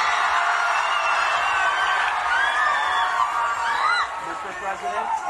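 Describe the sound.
A large crowd of about 4,000 students at the Student Action Summit cheers in a steady, dense roar of many voices, with high whoops and shouts rising over it, holding loud for about four seconds before easing slightly.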